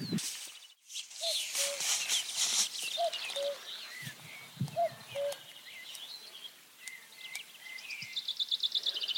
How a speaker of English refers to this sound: And there's a cuckoo very faintly down in the valley. There's been a few now, which has been really good news. Possibly just one moving around.